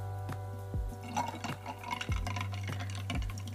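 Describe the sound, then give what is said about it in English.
Pouring or sipping of sparkling water, with soft liquid splashes and scattered fizzy crackles over a steady low electrical hum, no voices. “But today I actually have just sparkling water.”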